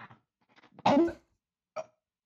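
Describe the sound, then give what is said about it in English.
A loud, abrupt hiccup with a brief voiced yelp, followed about a second later by a shorter, quieter second hiccup, with faint breathy sounds just before. “Oh my God, I have the hiccups.”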